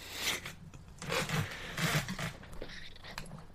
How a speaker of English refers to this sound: Y'all crunching numbers? I'm making my lineup here. Yeah, I'm typing it out so I don't miss anyone.